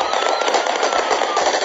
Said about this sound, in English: No way to hold back the crowd, even after Palestinian security men fired in the air.